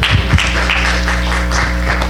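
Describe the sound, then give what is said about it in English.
An audience in a Pentecostal church clapping, a dense steady wash of many hands that holds at the same level for the whole stretch, with a low electrical hum underneath and no one speaking. “go ahead, clap. This is a Pentecostal church.”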